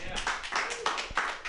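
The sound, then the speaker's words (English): An audience at a comedy show claps in a steady, rhythmic pattern, bright sharp bursts about three per second, fairly loud, with a murmur of voices underneath. “Guys, I want you to stop clapping for me, since you have been so loudly out on the internet.”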